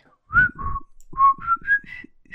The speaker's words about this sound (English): So what was I doing? I don't know. My pathetic whistling. I can play the flute, but I can't whistle.